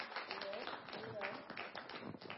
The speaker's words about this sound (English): Yes, let's put our hands together. If you guys are doing something like this, let's clap for them, because it's not easy.